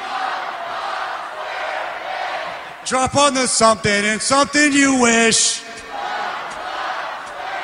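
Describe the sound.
A large concert crowd, led by a singer in the middle of a 17-song live set, sings a theme song a cappella in loud unison, no instruments, surging for a few seconds mid-clip over a constant roar of crowd noise that continues before and after.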